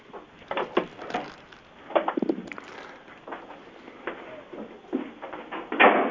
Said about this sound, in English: Hey, don't slam that door.